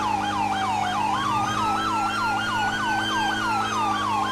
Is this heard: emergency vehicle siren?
yes